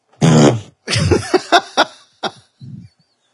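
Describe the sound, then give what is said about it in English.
A loud, buzzy fart, followed by a string of shorter sputtering bursts and a faint, low final squeak, with no talking. “I was like, I'm just going to surprise him without just getting up and fucking fart.”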